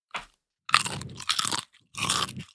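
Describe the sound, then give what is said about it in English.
Loud crunching of a crisp Wilde protein chip being bitten and chewed, with a short first crunch followed by several dense, crackling bursts separated by brief pauses. “And here, listen to the crunch.”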